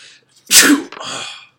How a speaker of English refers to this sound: Sorry, sneeze button.